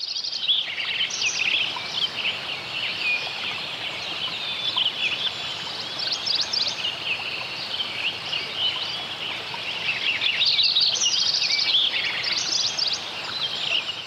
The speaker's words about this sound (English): The biophony's dawn chorus included the voices of Lincoln sparrows, warblers, Williamson sapsuckers, pileated woodpeckers, golden-crowned kinglets, robins, and grosbeaks